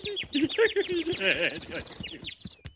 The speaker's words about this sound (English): Oh, look, a bird!